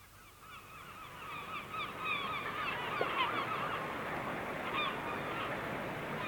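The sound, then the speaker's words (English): A large flock of geese honks continuously, many overlapping calls forming a steady noisy chorus that swells slightly, with no speech. “There are so many more birds.”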